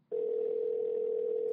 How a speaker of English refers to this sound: That might be too loud. He doesn't know why I'm calling him either. He probably won't answer. It's my luck.